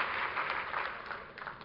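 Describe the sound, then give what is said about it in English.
A seated church audience claps their hands to the Lord in a dense, steady wash of applause, many overlapping claps blending into a continuous patter with small swells in loudness. “Why don't you clap your hands to the Lord as you're seated in Jesus' name.”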